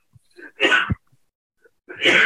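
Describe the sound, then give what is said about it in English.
Two harsh, explosive, loud coughing bursts, separated by about a second of near silence with a faint breath between them; no talking. “The coughs are coming large.”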